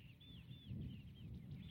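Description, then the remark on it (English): Birds, skylarks among them, calling in a series of thin, high, slurred notes, repeating every fraction of a second, quiet over a steady low outdoor rumble like wind, at a salt marsh with lagoons by the sea, near kale fields. “The birds don't mind though.”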